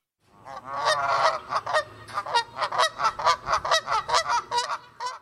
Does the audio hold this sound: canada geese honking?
yes